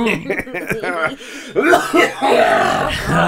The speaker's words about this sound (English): Wow. That was a throat cough.